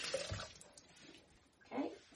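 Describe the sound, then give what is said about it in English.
Running tap water splashes briefly over hands as yogurt is rinsed off them, a short rinse with a burst of splashing at the start and another near the end, moderately quiet. “Okay, get the yogurt off my hands.”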